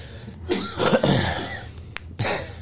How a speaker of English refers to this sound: You okay? You gonna be all right? Easy. Cough it up, man.